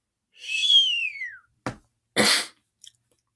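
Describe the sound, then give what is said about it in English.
A whistling sigh slides downward in pitch for about a second, followed by a short breathy puff, a longer rushing exhale and a faint click, fairly loud with no talking. “Who wanderest in the midst of shades among the tombs, here a whistling sigh occurred.”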